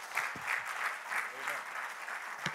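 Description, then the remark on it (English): A church audience claps hands together in a dense, steady wash of applause, with a few voices faintly audible underneath and one sharp clap standing out near the end. “If you're ready to receive the word, clap your hands unto the Lord one more time.”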